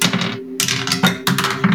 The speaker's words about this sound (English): It sounded like you rolled like 10 different dice. No, I rolled 2, but one of them bounced out of my dice box and landed on the other side of my desk.